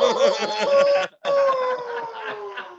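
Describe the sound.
A human voice mimics a rooster crowing: a loud, wavering held note, a brief break, then a long second call that slowly slides down in pitch, heard alone.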